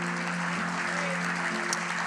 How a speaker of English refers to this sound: Could we stand up together and give the Lord a hand clap of praise today?